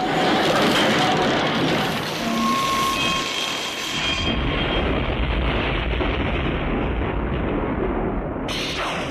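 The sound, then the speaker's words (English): A loud, continuous screeching, grinding metal sound effect accompanying the Heavy Metal logo moving into frame in the film's opening: thin squealing tones ride over harsh noise at first, then it settles into a heavier, rumbling grind with a sudden hiss near the end. “One thing I wanted to point out about the opening is that the heavy metal logo moving in with that screeching, grinding metal sound.”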